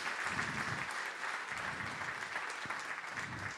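A steady round of applause from a crowd, dense clapping sustained at an even level for several seconds without pause, with no voices standing out above it.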